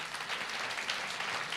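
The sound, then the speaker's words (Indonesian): A crowd applauds steadily for God, a dense wash of many hands clapping at once with no pauses, holding an even loudness throughout and no voices audible over it. “Boleh tepuk tangan buat Tuhan.”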